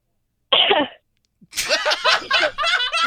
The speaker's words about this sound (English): Cough once if you liked the marijuana, and cough twice if you did not.